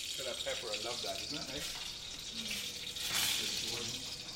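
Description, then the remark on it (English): A steady hiss of scotch bonnet peppers sizzling in a hot pan in a kitchen runs throughout, with a person talking over the top of the frying sound. “Couple that with the dumplings Karl has going on the back burner and the sizzling scotch bonnet peppers”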